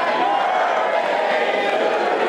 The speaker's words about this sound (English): The crowd sang happy birthday.